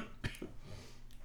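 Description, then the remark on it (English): A person gives a short, muffled cough followed quickly by a smaller second one, fairly quiet, with no talking around it; the cough comes from smoking a lot of weed. “I smoke a lot of weed, so this is actually part of the interview, because if I don't cough till I retch at least 6 or 7 times, you don't sound day, like you smoke a lot of weed.”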